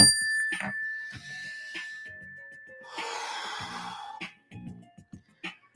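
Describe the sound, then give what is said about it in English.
A single mindfulness bell is struck, its clear ring hanging and slowly fading throughout, while a long, audible breath drawn in and let out sounds over the lingering tone. “And what I like to do with that little mindfulness bell and breath is just to keep it in the moment.”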